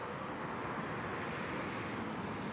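airplane flying overhead

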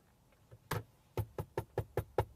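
knocking on a door

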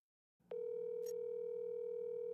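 telephone ringback tone

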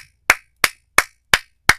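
hand claps

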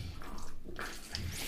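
drinking water

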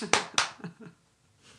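three hand claps

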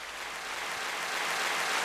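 crowd applause sound effect

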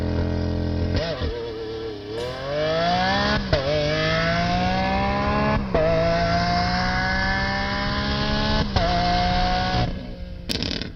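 car engine revving

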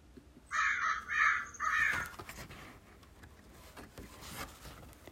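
crows cawing outside

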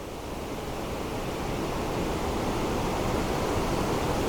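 waterfall rushing

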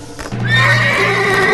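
horse neighing and galloping

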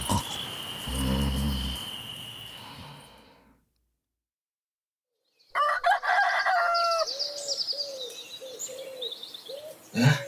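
rooster crowing

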